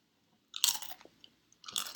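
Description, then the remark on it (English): Two loud, crisp crunches of someone biting into a chip, separated by about a second, with a few faint crackles between them and no talking. “So, what kind of chip and what was on that chip?”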